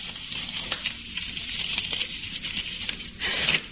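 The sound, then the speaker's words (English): A newspaper being unfolded to glance at the headlines: crisp, papery rustling and crackling that runs steadily for a few seconds, with a few sharper crinkles and a louder rustle near the end. No voices. “I unfolded the newspaper to glance at the headlines as I waited.”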